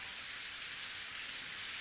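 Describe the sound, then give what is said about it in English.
Steady rain patters on a hard surface, a continuous hiss of countless drops with no pauses, even in volume throughout. No voices are present. “Night and rain made a cave out of the overpass that smelled of wet earth and alcohol and iron.”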